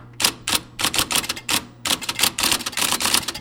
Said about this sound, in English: An IBM Selectric, the giant electric typewriter with a golf ball-sized type ball, circa 1961.